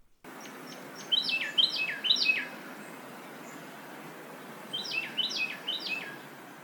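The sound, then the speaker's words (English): A male Carolina wren sings its loud tea-kettle song: two bursts of three ringing, rolling phrases each, separated by a brief pause, over a steady background hiss. “Some are well recognized, like their famous tea kettle, tea kettle, tea kettle song.”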